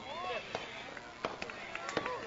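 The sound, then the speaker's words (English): Fireworks pop in a loose, irregular series of sharp cracks, several close together, fairly faint over a steady background murmur with indistinct voices; set off at a nearby house and heard during a baseball championship game. “There is some fireworks. I don't think they're here. Though I think they're in a nearby house off the side there.”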